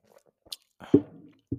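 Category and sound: food or drink, sipping tea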